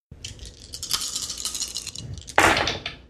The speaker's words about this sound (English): Roll 7 dice for damage.